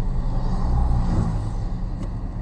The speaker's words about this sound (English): Then, yeah, those cars are suddenly very slow.